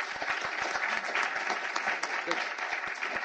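Steady audience applause for a speaker at a symposium, many hands clapping in a dense, continuous patter at even loudness with no voices standing out.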